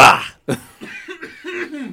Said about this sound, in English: What if I hit the cough button? What does that mean? Oh, wow, it means that you'll cough like.